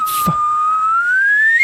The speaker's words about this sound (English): Can you whistle